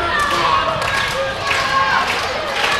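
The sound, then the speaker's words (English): A wrestling crowd cheers in a steady, loud roar of mingled voices, trying to will the wrestler Gustavo back up, with scattered claps, thuds and a few higher shouts or whistles rising above the din throughout. “Crowd trying to will Gustavo back up.”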